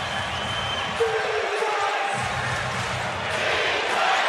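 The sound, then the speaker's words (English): A packed basketball arena roars with Perth Wildcats fans cheering at a home game after a Bryce Cotton three-pointer, a dense wash of voices and shouts that stays loud throughout, with a brief thump near the start. “Have a listen to this crowd.”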